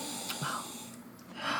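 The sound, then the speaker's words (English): A breathy inhale through the nose, like someone taking a deep sniff of something, with a couple of short airy bursts and no talking. “Before we get into our next topic, I want everybody just to take a good whiff of this.”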